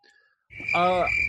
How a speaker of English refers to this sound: Oh, we got crickets in here. Oh, my goodness. I just thought that was so funny.